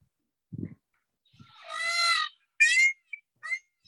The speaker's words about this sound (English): No, he said, cock! Yeah. That was a rooster.